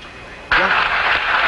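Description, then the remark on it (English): A crowd aboard the recovery ship Iwo Jima suddenly erupts into loud, sustained cheering and shouting after a moment of quiet, as the Apollo 13 capsule's three main parachutes open. The roar holds steady with a thin, radio-like quality. “Listen to the crowd on the boat.”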